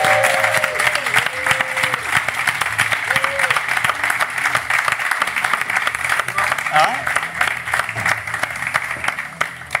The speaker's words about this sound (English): So please give a huge round of applause for Mr. Jake Wood!